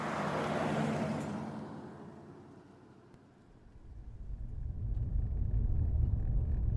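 A car drives along a road toward a mountain, a steady low engine and tire rumble that eases briefly and then swells louder, with some wind noise and no voices.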